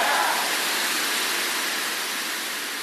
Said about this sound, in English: Beautiful rain. Beautiful.